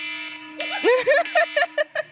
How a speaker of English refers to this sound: I have to tell you that I never remember to change my phone alarm sound away from that. So that is the nightmare noise that wakes me up every single morning.